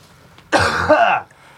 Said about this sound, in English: I got a cough.